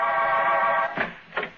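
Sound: apartment door buzzer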